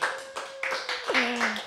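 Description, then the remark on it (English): A quick run of hand claps, about six or seven sharp, evenly spaced slaps, over a steady humming tone that drops lower near the end. “Where's the hand clap for that?”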